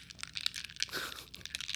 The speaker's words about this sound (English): A little ice stirring ASMR.